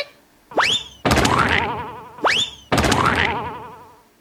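A cartoon boing effect from a hammer plays twice: a rising twangy sweep followed by a sustained wobbling, vibrating tone that slowly fades. The two boings are loud and stand alone without talking.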